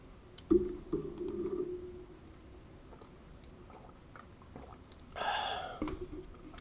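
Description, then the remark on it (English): Someone drinks water: a sharp click and wet gulping sounds near the start, a quiet pause, then a brief breathy burst after swallowing. No one speaks. “That sounded tasty. That was my water, mate.”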